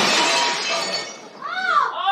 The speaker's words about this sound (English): They're going to break our dishes.